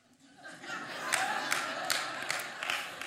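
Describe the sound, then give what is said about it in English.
A crowd claps during a sermon in scattered, overlapping applause, with several sharper individual claps standing out at irregular intervals over a steady wash of hand noise and faint murmuring. “Those of you who are clapping know fully, you probably consulted also.”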